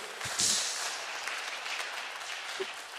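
A crowd claps steadily in a dense, even round of applause lasting a few seconds, with a brief sharper burst near the start and a few faint voices mixed in.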